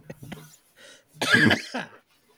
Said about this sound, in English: Damn it, I thought I was going to get through a whole episode without coughing.